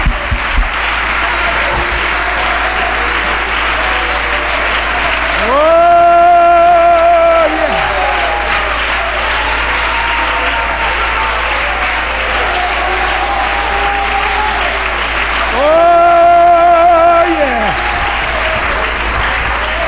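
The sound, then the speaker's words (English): An audience claps steadily during a sermon, a dense continuous patter of many hands, twice swelling as a long held musical chord or cry rises above the applause. “Clap your hands, everybody.”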